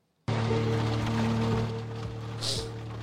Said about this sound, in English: Is that a sound effect? The rain sound right now was the rain audio that came from the opening scene.